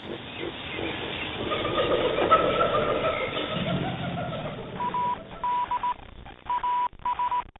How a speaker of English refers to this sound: We got Morse code.